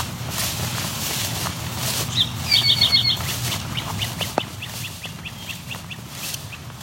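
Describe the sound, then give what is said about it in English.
At the edge of a field, a short burst of sharp, whistled whip calls from a great crested flycatcher rings out clearly midway, followed by a steady run of faint ticking notes, apparently from a house wren, over low outdoor rumble. “Those whips were from a great crested flycatcher.”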